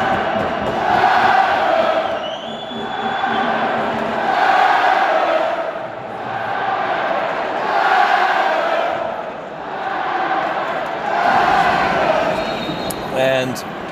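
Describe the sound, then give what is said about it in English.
A large football stadium crowd roars continuously during extra time of a match involving Sheriff, after a shot is deflected wide, the noise swelling and easing in steady waves every few seconds, loud and dense, with indistinct massed voices and no clear individual speech. “And now Fale with a shot deflected wide as the crowd starts to get into this.”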